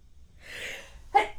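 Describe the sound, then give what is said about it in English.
Two sneezes close together, the first softer and more drawn out, the second a sharp, louder burst right after. Nobody speaks. “Two times. Wow.”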